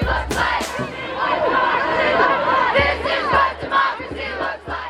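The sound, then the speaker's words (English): A large crowd of hundreds of thousands roars and cheers at the inaugural National Women's March on the National Mall in Washington, D.C., in 2017. Many voices shout together in a dense, loud wash of sound, with a few sharp bursts standing out and no single speaker. “a day after the election of former President Donald Trump, activist and journalist Raquel Willis approached the podium at the inaugural National Women's March in Washington, D.C., to share her story with hundreds of thousands of attendees.”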